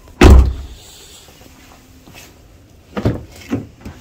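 A loud clunk of a Milwaukee Packout tool storage drawer, then a few lighter knocks and rattles as it slides and settles. No voices.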